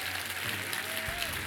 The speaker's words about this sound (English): Give your pastors a big old clap.